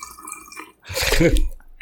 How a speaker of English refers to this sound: But someone's filling a toilet. Yes, I am.